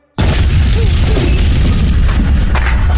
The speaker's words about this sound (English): From behind you, a huge explosion rocks the wing. The detonation is massive. It is easily enough to level that wing of the ministry.